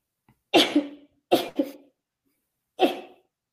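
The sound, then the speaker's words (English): Three sneezes in quick succession, each a sharp, breathy burst with a short trailing release, the last following after a slightly longer pause. No one speaks. “Only three. Bless you.”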